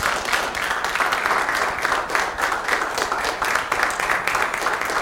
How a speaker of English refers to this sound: So let's honor our mothers with a hand clap this morning. In fact, the mothers stay sitting. Everyone else ought to stand and just clap your hands to honor the mothers.